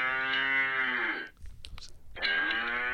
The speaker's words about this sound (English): The cow's mooing. Oh, yeah. Yep.